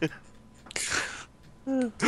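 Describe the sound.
A single sharp, breathy cough bursts out, loud and rough for about half a second, followed by a brief voiced sound afterward.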